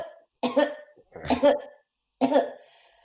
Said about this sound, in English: it said that you need to cough 4 times. Is that a thing? But if that's what the instructions say, yeah, then I think we should do it. Please, always follow the instructions. I'll do my very pathetic four coughs. You do your four coughs? I'll do mine.